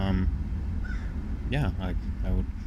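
A crow caws outside, three harsh, raspy calls in quick succession over a steady low rumble of background noise.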